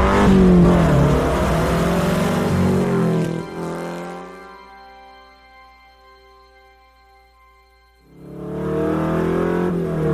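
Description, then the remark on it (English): A Porsche 906 race car engine, one of five built for the film Ford v Ferrari, revs loudly, drops to a steady idle with a low rumble for several seconds, then roars back up into another aggressive rev. “So this is one of 5 Porsche 906 race cars that was built specifically for the movie Ford v Ferrari.”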